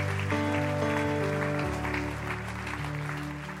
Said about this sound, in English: Come on. Clap your hands real big. You're an awesome people.